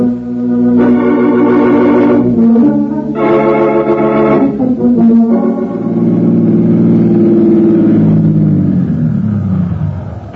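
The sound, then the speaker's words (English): A car engine hums and revs steadily, rising and falling as the vehicle moves through New York traffic, loud with a continuous rumbling drone and no voices. “You made nice time through this New York traffic”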